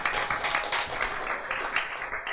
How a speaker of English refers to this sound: Another round of applause for ….